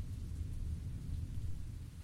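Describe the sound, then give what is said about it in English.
A steady, dense wash of heavy autumn rain falling on an old narrow road, with a deep, continuous rumble beneath it, like thunder rolling through a storm, sustained with no voices. “So it was that I found these five words repeating in my mind as I trudged fruitlessly down the old narrow road through a deluge, hoping that I could find any kind of shelter.”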